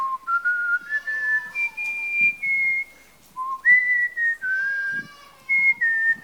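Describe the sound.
A person whistles a slow hymn tune alone, a Second Coming song, clear, gliding between sustained notes in a stepwise melody with short breaths between phrases.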